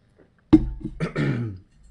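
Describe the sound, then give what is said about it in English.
An abrupt cough bursts out, followed by a rough, drawn-out throat clearing with a gravelly voiced rumble, all within about a second, with no talking. “Now, anytime anybody coughs, it's like, ooh, so I'm about to cough, but I'm going to drink some water.”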